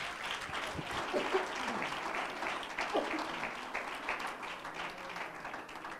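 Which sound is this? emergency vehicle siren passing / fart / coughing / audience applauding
audience applauding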